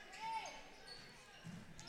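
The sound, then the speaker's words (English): A loose basketball thumps on the gym floor during a women's basketball game, faint, with a brief sneaker squeak and a murmur of crowd noise from the arena. “Ball's on the deck here.”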